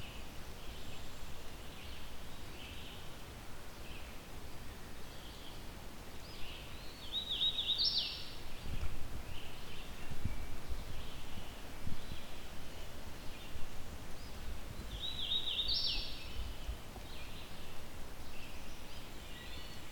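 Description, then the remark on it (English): A male hooded warbler sings two short, bright whistled phrases about seven seconds apart in a mostly maple forest with a high canopy, over a steady background of wind and rustling leaves. “I still can't see this bird, but mostly yellow, black hood is what you would expect with a hooded warbler male.”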